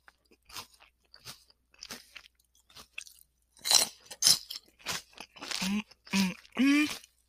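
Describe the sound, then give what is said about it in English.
Crisp crunching of someone chewing crunchy salad, bites coming in a steady irregular rhythm and growing louder, followed by a few short voiced murmurs at the end. “Now, if you didn't want yours just crunchy, I know people have different preferences.”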